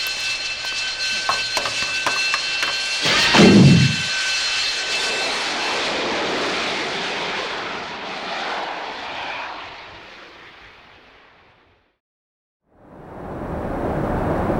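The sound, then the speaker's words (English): A loud airplane engine roars with tonal whine, surging strongly, then sustains a broad steady drone that gradually fades, drops to near silence, and returns abruptly near the end; the plane is Flight Tango Foxtrot 701 taking off from Fairchild AFB bound for Lackland AFB. “Get in the plane”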